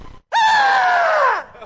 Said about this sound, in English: Masked owl. You know what a masked owl is, don't you? Okay. Masked owl.